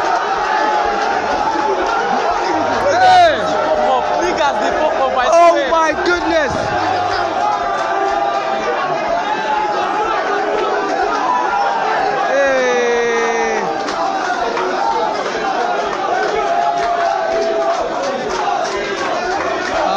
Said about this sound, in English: Giorgino, everyone is shouting Giorgino, and this could be a chance to take Italy into the Euros.